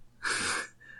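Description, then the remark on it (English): A single short, harsh cough bursts out with a raspy, phlegmy edge, picked up on a microphone, lasting about a third of a second, with no talking around it. “Sorry for the coughing.”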